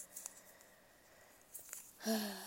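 A person rips up a paper with a question on it: it rips in a few short, crackly bursts, with a louder, longer tear at the end, fairly quiet, with no talking.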